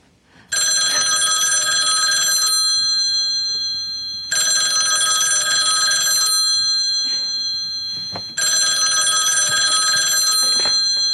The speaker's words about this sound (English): So she watches it and then... The phone rings! The phone rings!